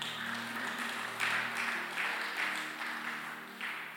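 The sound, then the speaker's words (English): An audience claps their hands together after a prayer, a dense, steady wash of clapping with a few swelling surges and no one speaking over it. “I know the reason why some of us did not clap your hand, because you didn't know whether God has actually answered you.”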